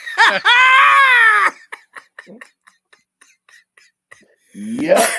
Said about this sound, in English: Don't scream